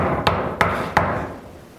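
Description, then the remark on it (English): Three sharp knocks on a door, evenly spaced about a third of a second apart, fairly loud over a low background rumble. “She hears the noise coming and she waits for the knock on the door.”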